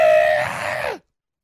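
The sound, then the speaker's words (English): A single voice lets out one loud, sustained 'aaah' scream for about a second, imitating a crowd screaming in hatred at an enemy's face flashed on screens at a public event, its pitch sagging downward before cutting off abruptly into silence. “And then you would just scream for 10 minutes going, ah! Ah!”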